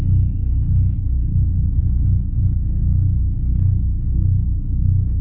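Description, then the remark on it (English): A taped recording of a pulse from the center of the galaxy with the golden mean added, sounding almost identical to a craft: a loud, deep pulsing drone hums steadily for several seconds, its layered low tones throbbing with slight uneven hiccups and stutters, and no voices. “both have a sound of a pulse coming from the center of the galaxy”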